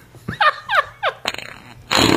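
Cartoonish fart sound effects: three short, squeaky toots that slide downward in pitch, followed by a longer raspy buzz and a loud hissing burst at the end. No one speaks.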